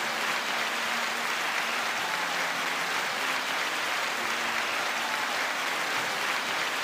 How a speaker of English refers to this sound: Once again, round of applause.